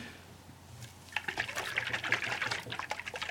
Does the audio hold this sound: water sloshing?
yes